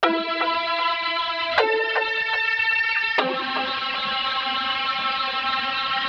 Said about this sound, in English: Right, well, I can certainly hear some kind of amp distortion going on. I'm not sure what the source oscillators are. I'm going to try turning up the first macro. And it certainly sounds like that is pushing the drive a bit there.